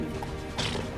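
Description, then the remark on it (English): Horse hooves clip-clop at a steady walking pace as horses pull carts of people uphill along a bumpy path toward an estate, with a brief louder scuffing burst partway through over a low rumbling background. “It's actually not that far to get to the estates, especially with the horses.”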